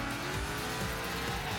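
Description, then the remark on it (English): A racing car engine in a racing video game roars steadily while tires squeal, a loud, continuous burst of high-revving motor and skidding rubber lasting under two seconds with no voices. “reimagined in-game physics to add even more realism to a car's behavior, and different sound effects that reflect the power of your car.”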